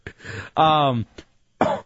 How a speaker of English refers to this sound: Can't get rid of this cough.